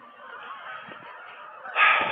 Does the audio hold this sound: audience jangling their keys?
no